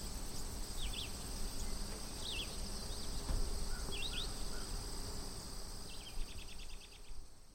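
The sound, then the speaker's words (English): A steady, high-pitched chorus of spring peeper frogs fills the background, with scattered bird chirps and a short trill coming through in a quiet outdoor setting. “Birds are still out, but the peepers are starting.”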